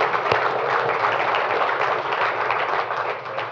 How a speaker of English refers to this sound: Amen? Amen. Amen. Praise the Lord. You can applaud.